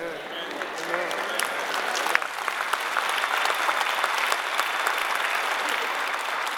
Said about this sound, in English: Amen. Amen. I think 18 people clapped their hands on that go around.